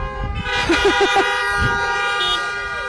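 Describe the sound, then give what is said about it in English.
Several car horns honk together in a loud, sustained blare, with a few short repeated toots mixed in over a busy outdoor background. “I got a few horns.”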